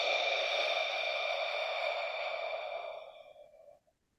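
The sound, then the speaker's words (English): A single slow exhale through rounded lips with the tongue dropped, done as a breathing exercise: a steady breathy whoosh with a faint hollow tone that holds for about three seconds before tapering off into silence. No one speaks. “Now we drop our tongue, round our lips, and exhale.”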